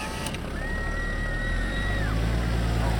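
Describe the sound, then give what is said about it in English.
Steady street traffic on Hollywood Boulevard at 9 o'clock roars throughout, a dense wash of engine rumble and road noise with a sustained higher whine passing through the middle. No one speaks. “Why is there traffic on Hollywood Boulevard?”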